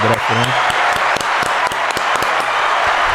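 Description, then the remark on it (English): A crowd claps steadily for about three seconds to congratulate everybody, a dense, loud wash of overlapping hand claps with sharper individual slaps popping out, while a voice briefly sounds at the start. “So let's clap it up for them.”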